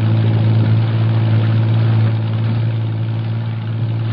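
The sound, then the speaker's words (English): The engine of a patrol boat, one of several lined up for an operation, drones steadily as it shoves off from the waterfront. It makes a deep, even hum with a low throb underneath that eases slightly in loudness partway through, with no voices. “Jeffries, Morris, and I race to the waterfront and pile aboard one of the several patrol boats lined up for the operation. We shove off.”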